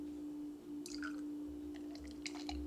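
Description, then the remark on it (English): Soft, wet mouth sounds of someone sipping beer and swallowing, small clicks and slurps in two short bursts over a steady low hum, with no talking. “Ah, refreshing. How refreshing.”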